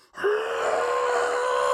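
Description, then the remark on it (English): A human voice imitates a creature's scream in the woods, like what people claim is a Yeti call: one loud, sustained, steady-pitched wailing cry that starts abruptly after a brief hush and holds for over a second and a half. “And like what people claim is like a Yeti call or something.”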